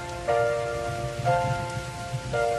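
Steady rain hisses continuously, with a soft low rumble underneath and a sustained tonal note swelling in about once a second over the downpour.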